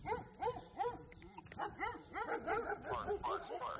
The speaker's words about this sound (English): Yeah, and then more dogs barking.